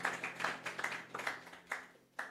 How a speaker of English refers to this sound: Let's give Pastor Amy a round of applause. Amen.